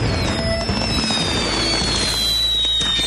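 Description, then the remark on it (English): Fireworks crackle and hiss continuously inside a van, loud, with sizzling whistles and dense popping bursts filling the whole stretch. “He's setting off the fireworks in the van.”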